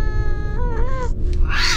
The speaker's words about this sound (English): Oh, Jesus, just a damn cat.